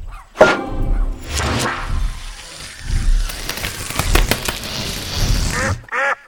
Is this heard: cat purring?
no